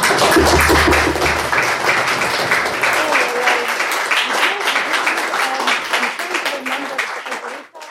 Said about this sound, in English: I would like you to give the four discussants a warm final applause.